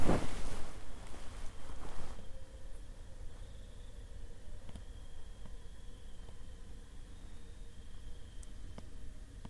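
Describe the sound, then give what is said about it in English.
A motorcycle engine drones faintly and steadily under a wash of wind-like noise, with a louder rumble in the first two seconds before settling into a thin, sustained hum. “Right, that's a motorcycle, for sure.”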